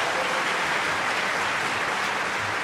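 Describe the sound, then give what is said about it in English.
A crowd at a Heritage Radio event claps steadily to welcome a guest, a dense, even wash of applause that holds at a fairly loud level for a few seconds with no voices rising above it. “I had the applause die down for a second.”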